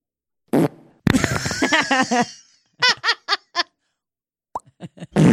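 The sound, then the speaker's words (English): A loud fart sound effect: a long, wet sputtering blast, then a quick run of four short squeaky toots and a few smaller pops, heard alone with no talking. “Maybe we need a fart sound effect to get us going.”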